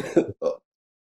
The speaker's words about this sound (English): Excuse me for a second. I don't know why I keep coughing.